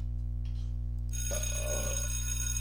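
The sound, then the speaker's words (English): A bell starts ringing about a second in and keeps going, a bright, sustained metallic ring with shimmering overtones, fairly loud, with a low steady hum beneath and no talking. “Your belch was almost as long as the bell.”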